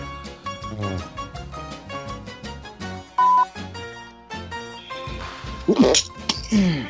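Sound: held-in sneeze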